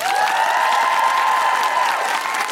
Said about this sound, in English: A big round of applause to the wonderful Dr. Anne-Marie Imafidon.